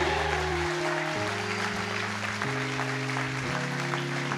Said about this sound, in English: I know you guys don't want to, but would you stand? Let us give you a great round of applause. Come on, band, stand up.